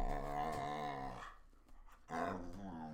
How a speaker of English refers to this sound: What do you want? Well, you guys hear this dog, right? I mean, what do you want?